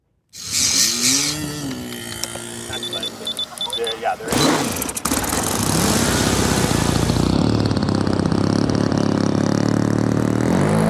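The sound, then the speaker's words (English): A small radio-controlled model airplane engine buzzes loudly and steadily for several seconds at the Jasper RC Flyers Strassenfest fly-in in DuBois County, a harsh high-pitched whine that follows a brief stretch of murmured voices and background noise. “And First City Focus learned that those who are into RC or radio-controlled airplanes absolutely love their hobby.”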